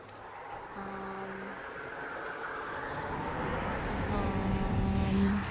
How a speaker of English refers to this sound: There's a lot of cars kind of passing by right now. There wasn't so many cars last time